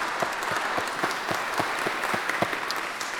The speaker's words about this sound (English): that praise, those claps, that applause is all to God's glory, because we serve a good and gracious God, don't we?